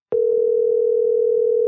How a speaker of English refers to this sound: Should be on the line here shortly. Is ringing him up.